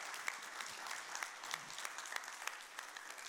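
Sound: audience clapping hands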